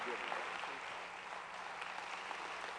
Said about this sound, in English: And so tonight, I want you to stand to your feet and let's give a good round of applause